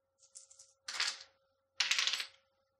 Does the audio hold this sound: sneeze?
no